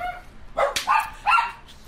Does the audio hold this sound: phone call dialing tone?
no